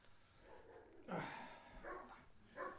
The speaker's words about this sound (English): That's why the dogs are all barking and shit.